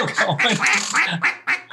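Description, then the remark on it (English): A duck call blown, producing a rapid run of about six loud, raspy, nasal quacks in a choppy rhythm, with no talking. “Yeah, if you don't think duck calls are weird, you got to see this.”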